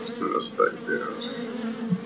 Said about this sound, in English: Not my good friends the wasps. He hits them again, those clouds them come out.